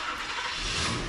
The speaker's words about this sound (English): Look, I'll show you. The starter in my car won't even turn the motor over here.